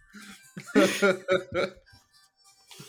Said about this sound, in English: So sorry. No, I feel like that's my cough. That's just my cough.